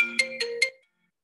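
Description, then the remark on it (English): A phone ringtone from an incoming spam call chimes through a laptop in one short burst of three quick, bright electronic tones, clear and fairly loud, then cuts off into silence. “My phone's on silent. However, it apparently comes through my laptop really loudly.”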